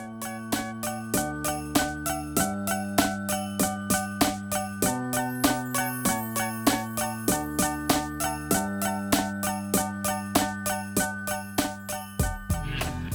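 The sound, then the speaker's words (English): Bright little bell tones from a small student xylophone about a foot and a half long ring over steady, evenly pulsed quarter-note synth key stabs, with a low bass line shifting pitch every couple of seconds. Purely instrumental, no voices. “I think that's I have like a little xylophone. You know, it's like a foot and a half.”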